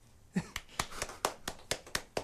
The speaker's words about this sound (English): I'm clapping. I'm clapping on behalf of the audience at home.